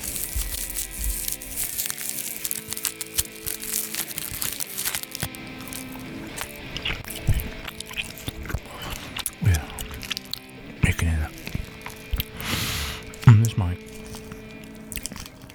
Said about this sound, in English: It's very clear. You can hear me chewing and opening the wrappers.